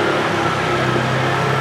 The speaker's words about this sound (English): Yeah, scooter, why not? Bring a scooter in here in the pedestrian walkway, why not?